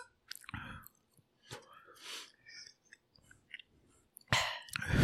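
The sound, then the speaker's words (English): Wet lip smacking and chewing while someone eats spicy food, coming in irregular clicky bursts with quiet gaps between, ending in a louder, longer run of smacks and mouth noise. “You know, just a lot of lip smacking.”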